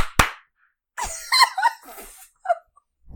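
A single sharp, loud hand clap, made after a 3, 2, 1 countdown to sync recordings, rings out, followed by a pause and then a stretch of brief, wordless vocal noises, with another abrupt sharp hit right at the end.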